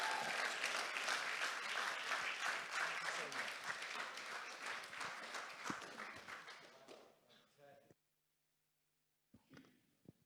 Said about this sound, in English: Okay, let's welcome him up. Big clap for him.